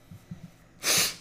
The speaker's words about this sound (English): I have a sneeze. Don't sneeze, it's not COVID safe. Don't sneeze. Dang it.